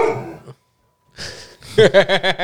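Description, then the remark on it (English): A dog lets out a quick run of about half a dozen sharp barks in fast succession, after a brief breathy noise and a moment of silence, with no one talking. “So the dog has an opinion on it too.”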